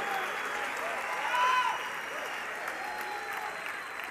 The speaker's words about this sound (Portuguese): se é para aplaudir, aplauda glorificando a Deus, porque Deus está dando vida, renovando, trazendo algo novo.